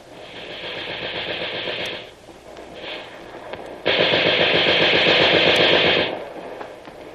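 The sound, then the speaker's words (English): Rapid bursts of machine gun fire rattle out in two long stretches, the second louder and denser, separated by a brief lull with a short burst between them. “But still cover the place with this gun.”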